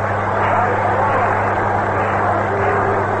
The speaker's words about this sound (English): Manager Mel Ott of the New York Giants is coming up. He's going to pinch hit for Walter. Ott is getting a great hand from the crowd. Listen.